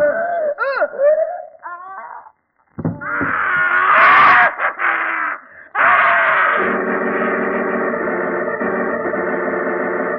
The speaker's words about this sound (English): Scream? Yes, I was in bed when it came. Positively ghastly, too. Seemed to come from Uncle Andrew's study.